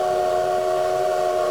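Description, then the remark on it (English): A train sound effect: a whistle blows in one long, steady, loud blast over a low rumble of rail noise, with no voices present. “Well, it sounds like the old Teague train might have derailed this week.”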